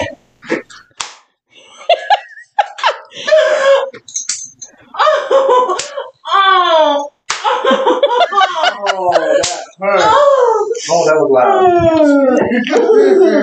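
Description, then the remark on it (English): Several sharp slapping spanks land in quick bursts, mixed with loud voices and exclamations that cry out and laugh between and over the hits. “So how are those spankings”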